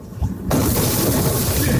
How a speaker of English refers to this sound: And a bus takes the door with it.